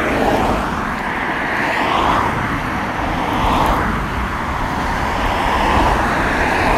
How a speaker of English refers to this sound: There's a car just went past me. I'm on the smallest footpath, and he wasn't paying attention, so his wheels were pointed directly at me. Luckily, he moved just in time.